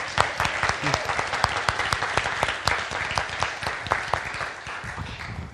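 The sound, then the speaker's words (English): An audience applauds the actors after a performance: dense, steady clapping from many hands, a bright crackle of sharp overlapping claps at an even loudness that eases off slightly toward the end. “Just want to give them one more round of applause.”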